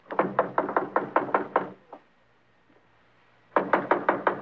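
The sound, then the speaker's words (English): Loud knocking on a door by the police: a rapid burst of about eight firm raps, a short pause with one stray tap, then another quick burst of pounding after a few seconds of quiet. “Fred, open up. It's the police.”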